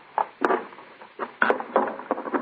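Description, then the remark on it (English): A hammer prying up loosened wooden boards from a boarded-up door: a string of irregular woody knocks, creaks and scrapes, some sharp and clicky, moderately loud with brief pauses between them and no talking. “What are you going to do? Pry up those boards? Yes, they're loosened up.”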